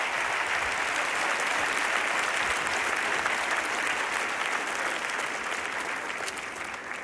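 A standing church audience breaks into sustained, dense applause during a service, many hands clapping steadily at an even level for several seconds before easing slightly at the end, with no voices standing out.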